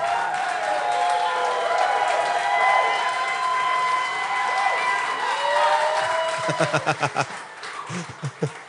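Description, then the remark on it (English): An audience applauds steadily as guest rapper of a musical group is introduced, with whoops and cheers rising over a dense wash of clapping. Near the end the applause thins into a few scattered, distinct claps. “It's rude to keep clapping.”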